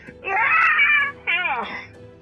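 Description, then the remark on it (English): Two anguished screams from a druid that has just been crushed under a rearing creature's hooves and set partly on fire: a long, strained, high-pitched wail, then a brief gap and a second cry that bends downward in pitch before trailing off. Both are loud and heard on their own. “As it rears up and just crushes it with its hooves and sets this druid partly on fire, and you just hear them scream.”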